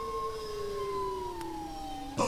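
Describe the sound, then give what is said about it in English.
A long, smooth tonal moan from a bowhead whale, one sustained note with harmonics that slowly glides downward in pitch, heard alone and fairly steady before a brief noisy burst at the end. “That is, in fact, a bowhead whale.”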